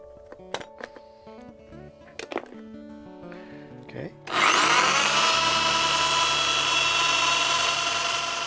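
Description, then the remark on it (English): A few light clinks and taps of small parts being handled, then a loud, steady whirring rasp of a guitar saddle being sanded starts abruptly and continues to the end. “In this case, so I have to sanding the saddle.”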